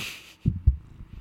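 A cat purring, heard as a deep, throbbing rumble with a few soft pulses after a quiet hiss at the start. No one talks.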